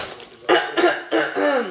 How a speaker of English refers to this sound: I love that cough before you read.